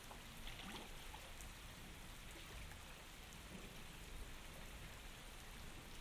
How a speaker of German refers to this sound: Der Regen fällt zu schnell zum Zählen, von hier aus.